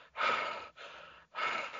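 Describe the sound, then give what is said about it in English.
A voice imitates heavy, exhausted breathing as done when starting to play basketball: three loud, raspy breaths in quick succession, with no words spoken. “Because I'd always just start breathing like.”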